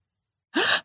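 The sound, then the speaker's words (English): A single sharp, breathy gasp of amazement, fairly loud, rising quickly after a stretch of silence and lasting about a third of a second. “They gasped, "What a beautiful child, like a murti in a temple."”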